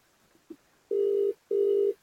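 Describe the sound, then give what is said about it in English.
Two steady ringback tones from an outgoing phone call, each lasting about a third of a second with a short gap between, clear and moderately loud with no talking. “I want to see if he picks up his phone.”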